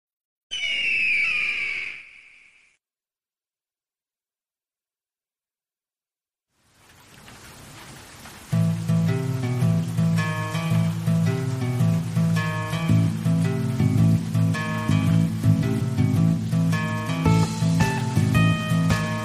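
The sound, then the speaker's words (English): An eagle screech sound effect, played during an audio glitch: a single loud, shrill screech rings out for about two seconds, followed by silence, then a rushing wash of noise swells into steady music with a deep bass pulse. “We got two eagle screeches in there, but I digress.”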